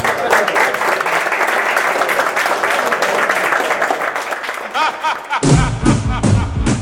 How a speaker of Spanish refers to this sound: Muchas gracias, despedimos a nuestros invitados con un aplauso, gracias.